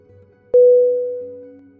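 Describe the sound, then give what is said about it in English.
A telephone line tone after dialing a phone number starts abruptly after a brief quiet moment, holding one steady electronic pitch that slowly fades over about a second and a half, heard alone without any voices. “He dialed the phone number and waited for an answer.”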